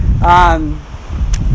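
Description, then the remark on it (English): Wind gusts rumble low and steadily throughout on a beautiful but windy day, buffeting the microphone, while a short voiced sound from a person rises briefly over it near the start. “We're being careful, but it's good to be together on this beautiful day, albeit a bit windy day.”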